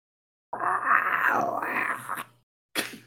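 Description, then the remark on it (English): A person makes a long, rumbling monster growl with their voice, the pitch dipping and rising for about two seconds, then a brief second growl starts after a short pause. “Do you like my monster voice noises?”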